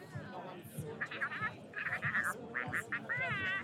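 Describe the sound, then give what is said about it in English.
A pet duck makes a run of soft, warbling purr-like trills in short repeated bursts while being petted on the cheeks, with quiet rustling and low murmuring underneath. “So one of the things this duck does when he gets really excited is he purrs.”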